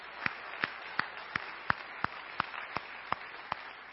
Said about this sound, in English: And if you have not accepted the truth of Jesus Christ, give the Lord a clap of praise for that. Amen.